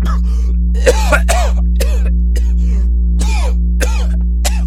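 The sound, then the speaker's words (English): A man coughs and clears his throat repeatedly in rough, loud, phlegmy bursts, as if choking on his own phlegm, over a steady low electrical hum, with brief gaps between each hacking fit. “let out a loud cough as he seemingly choked on his own phlegm.”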